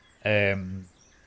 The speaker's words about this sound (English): There are the sounds of birds that you haven't heard before.